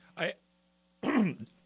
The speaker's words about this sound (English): I missed the cough button. Was that a cough, by the way? Yeah, that was you